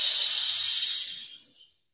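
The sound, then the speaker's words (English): A person imitates a raccoon's hiss with one sharp, breathy hiss, loud at first and tapering away over under two seconds, with no talking. “They hiss like a cat.”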